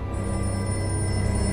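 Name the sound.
telephone ringing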